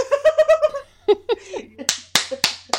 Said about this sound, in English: I think that's a round of applause.